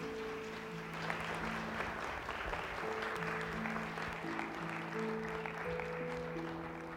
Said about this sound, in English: One more round of applause for the kids, and then we'll turn it back over to y'all.